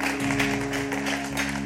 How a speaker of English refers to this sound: Can somebody shout amen? Can you clap your hands and give God some glory?